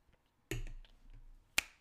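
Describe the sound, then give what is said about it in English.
A quiet sip from a drink, a brief slurping draw, followed by a sharp little click like a cup being set down. No one speaks. “Let me take a sip and then let me get into this and we're going to wrap it up.”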